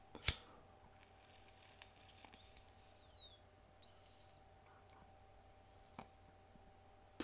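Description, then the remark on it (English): Faint bird chirping: a few quick, high, downward-sliding chirps heard alone over a low steady hum, with a sharp click at the start and another near the end. “Chirping.”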